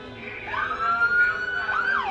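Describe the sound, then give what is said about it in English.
Police car sirens blare loudly and steadily as the cars follow protesters walking down Shelbyville Road, their wailing tones sweeping up and down over a rumbling street background with no voices. “Police cars follow behind with their sirens blaring.”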